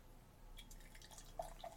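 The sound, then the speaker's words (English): Soda pours into a glass with a soft, steady fizzing hiss and a couple of small bubbly plinks near the end. It's quiet, with no one speaking. “Do the pour. And the pour.”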